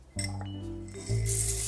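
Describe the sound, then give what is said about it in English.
Pumpkin seeds tumble into a strainer with a continuous clinking, rattling pour and a faint metallic ring, swelling louder about halfway through into a brighter, hissing rush. No one speaks. “And while you're waiting for that to preheat, take both your pumpkin seeds and pour them into a strainer.”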